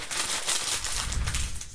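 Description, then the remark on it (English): Two sheets of paper being crumpled up, a continuous dense crinkling and crackling that fills the short moment with bright, irregular rustles and no voices. “I get to crumble it up when I'm done.”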